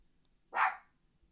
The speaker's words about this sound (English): Maybe like somebody is an intruder that I don't know about. She has the right to be barking. But sometimes she just be barking for absolutely no reason.